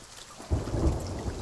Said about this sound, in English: I wonder, can we move down here so maybe the rain won't be as loud? Possibly.